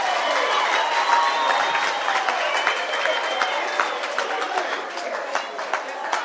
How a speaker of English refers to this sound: And clap your hands for Jesus, for her skin.